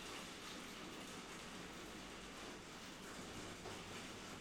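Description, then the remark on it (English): A steady, dense hiss of rain pours down continuously outside, an even wash of noise with no pauses or voices. “Oh, it's close raining.”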